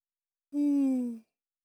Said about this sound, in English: Oh, big yawn.